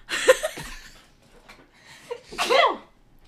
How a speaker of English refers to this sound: I need a sneeze. I need a sneeze too.